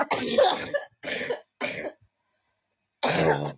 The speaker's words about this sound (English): Wait, I'm gonna freaking cough.